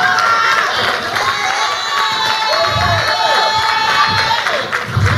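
A church audience claps and cheers steadily for a pastor for several seconds, a loud, dense wash of whoops and shouts with rising and falling voices layered over constant applause.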